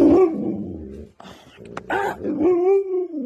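A dog named Manson lets out a run of grumbling barks and growls, rising and falling in drawn-out, almost talking vocal sounds over a few seconds, with no one speaking.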